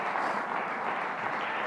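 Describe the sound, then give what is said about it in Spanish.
A church audience stands and applauds together, many hands clapping into a dense, steady wash of sound that holds an even loudness throughout, with no voices standing out. “Y por eso nos podemos poner de pie, ahora pónganse de pie, podemos aplaudir, podemos gozarnos, porque tenemos la libertad en Cristo Jesús.”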